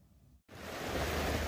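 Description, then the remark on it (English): Rushing floodwater roars in a steady, dense wash of noise that cuts in after a brief silence and swells louder, continuous, with no voices. Floodwater in Northern California after heavy rain from an atmospheric river, with at least two rivers spilling over. “Heavy rain caused power outages, road closures, and at least two rivers to spill over.”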